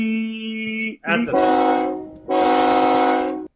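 A loud train horn sounds in three sustained blasts, the first one lower and thinner, then two fuller, brassier blasts separated by a short gap, with no voices.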